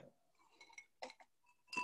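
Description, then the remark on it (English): Glasses of a poinsettia cocktail made with Diet Ocean Spray and André champagne clink together in a toast, a few quick ringing taps with short bright tails, soft, the last clink the loudest, with no talking. “So, cheers.”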